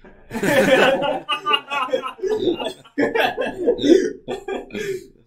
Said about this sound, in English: I start coughing.